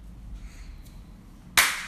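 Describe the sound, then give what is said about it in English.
A single sharp hand clap, made to imitate a film clapperboard for syncing audio and video, breaks a stretch of near silence with low background hum, loud and crisp, and rings out briefly at the very end. No one speaks. “Why did you just clap?”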